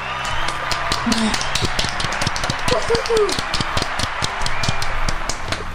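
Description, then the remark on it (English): An audience applauds steadily for several seconds, a dense crackle of many hands clapping at once with sharp, uneven claps standing out, holding a fairly constant loudness throughout. “Thank you. Applaud them.”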